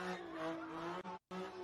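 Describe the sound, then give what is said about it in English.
A car drifts on a street with its tires squealing in a loud, sustained screech over engine noise, cutting out abruptly for a split second before the squeal resumes. “Now, the car drifted into him, slammed him headfirst into the concrete.”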